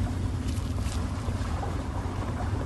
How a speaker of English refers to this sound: Here, water running.